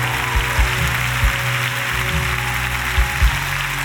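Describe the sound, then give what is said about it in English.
A church audience claps together during a sermon in a steady, dense wash of applause, with a few low thumps underneath. The clapping holds at an even loudness throughout, with no voices. “Come on, clap your hands if you know that's all God wants.”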